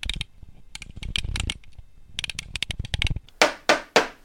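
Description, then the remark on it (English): Rapid small clicks and rattles give way to three loud, sharp knocks in steady succession as a pencil sharpener is rapped on a desk as a gavel, each hit ringing briefly before fading; the sharpener breaks from the use. “Don't use a pencil sharpener as a gavel.”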